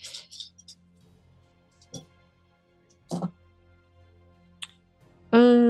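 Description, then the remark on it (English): Dice being rolled in a tabletop game clatter in a few short bursts of sharp, hard clicks spread across several seconds, fairly quiet, with a voice starting to speak right at the end. “So let's roll this and see what happens.”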